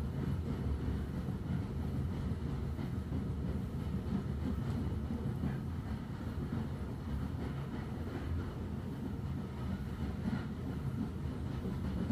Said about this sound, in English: As the train moves past the end of platform 9 3/4, sound changes. No echo of the steel wheels on the track.